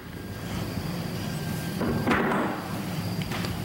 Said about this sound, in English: It sounded like somebody touched the door handle.